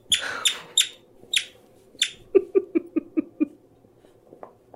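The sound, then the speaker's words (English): A dog squeezing its squeaky toy, first a few sharp high squeaks, then a quick run of six evenly spaced, lower honking squeaks, with no talking. “No squeaking. No. He tried. No squeaking. No. His squeaker's broke. Oh. He fixed it.”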